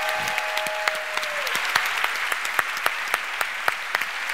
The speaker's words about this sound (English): So if we could all give a round of applause to Gary O'Reilly. Gary.